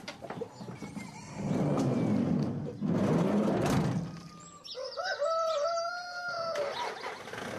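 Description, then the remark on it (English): Chickens in the back of a van cluck and shuffle with a noisy, busy texture, then a rooster lets out a single drawn-out crow, clear, rising and falling over a couple of seconds. “with the chickens in the back of his van, and a map printout and sat-nav in hand.”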